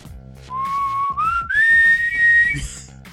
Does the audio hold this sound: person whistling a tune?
yes